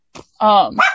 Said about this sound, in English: Shut up, dogs. Oh my god.